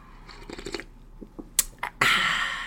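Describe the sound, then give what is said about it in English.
A few soft wet clicks and smacks, then a long, loud, hissing slurp of a piping hot cup of French roast coffee that trails off slowly, with no talking. “I just hear somebody enjoying a libation.”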